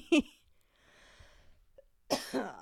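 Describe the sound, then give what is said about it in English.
A short, sharp cough from a person with seasonal allergies, a quiet breathy pause with faint sniffling, then a second harsher cough burst near the end. “And there's the cough.”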